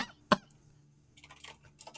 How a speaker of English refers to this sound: Clicky-clacky, typey-typey. This typing brought to you by our sponsor today, Nobody.